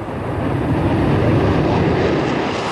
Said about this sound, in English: Lifting into the skies with its characteristic elegance and the distinctive roar of the engines, there is no other aircraft like this. There will probably never be another aircraft like this,